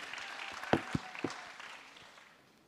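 A church audience gives a brief round of applause for the scripture reader: a wash of scattered hand claps with a few sharper, louder claps, tapering off quickly into quiet.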